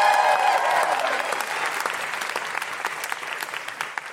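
An audience breaks into a round of applause, dense and loud at first with a few whoops, then thinning into scattered claps that fade over a few seconds.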